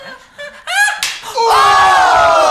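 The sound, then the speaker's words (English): At a tournament, a single sharp backhand slap from Hillary Clinton to a woman's face cracks out after a short vocal cry, followed by a loud, sustained scream with crowd noise underneath. “And what a backhand from Hillary Clinton!”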